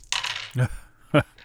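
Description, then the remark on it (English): A handful of dice rattles and clatters across a hard tabletop, followed by a couple of separate sharp clacks as stray dice land a moment later. “That was a lot of dice.”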